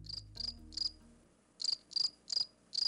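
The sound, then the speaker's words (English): A cricket chirps in a steady rhythm, about seven short, shrill trilled bursts spaced evenly apart, clear with no talking, over a faint low hum at the start. “So, let's get to talking about that cricket in the room.”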